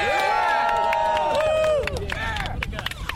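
A group of people cheers and whoops together, loud overlapping yells rising and falling in pitch, then thinning into scattered shouts after a couple of seconds.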